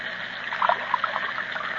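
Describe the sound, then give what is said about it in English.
Broth trickles and splashes steadily as it is transferred from a hot cooking tin into a cup, with a few brighter gurgling blips over a continuous pouring wash, no voices. “while I transfer it into the cup and feed him some of it.”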